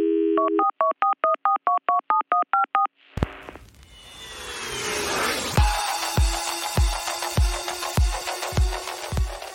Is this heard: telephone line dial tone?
yes